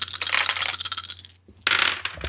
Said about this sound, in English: Just roll the dice, make a mental note of it, because that number might change in a second. Let me know when everybody is done rolling their dice, and we'll go on to the next part.